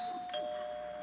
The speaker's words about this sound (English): Catherine's probably standing behind the door right now, waiting for me to ring the bell.